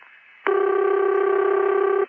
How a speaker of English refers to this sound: Okay, the number's been dialed and the call is going through. Now you hear the long distance sound come up, and in just a few seconds the phone is going to ring at the far end.